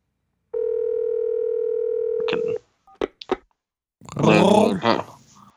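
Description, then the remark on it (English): Telephone dialing tones as a call is placed to the Creature from the Black Lagoon: a steady electronic tone holds for about two seconds, then a few short beeps, followed by a brief burst of voice. “I'm going to call him.”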